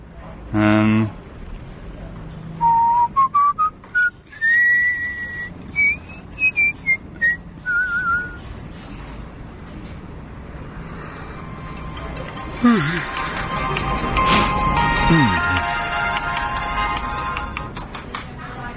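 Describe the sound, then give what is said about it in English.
An alarm goes off: a chirpy, whistle-like melody of rising and falling tones, then after a pause a dense, buzzing electronic ringing that keeps going loudly to the end. “Is that your alarm?”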